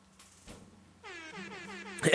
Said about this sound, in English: Inappropriately, the DJ air horn.